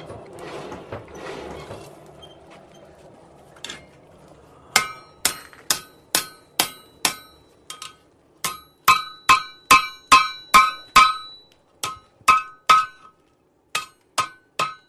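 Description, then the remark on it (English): A blacksmith strikes hot metal, just brought out of the fire, on an anvil with a hammer in a steady rhythm, shaping it. Each blow rings out sharp and bright, with brief pauses between runs of strikes after a short stretch of shuffling noise. “The blacksmith gets his metal hot enough, out, brings it out of the fire to the anvil here and gets his hammer and what other tools he's got and starts shaping it into whatever he needs.”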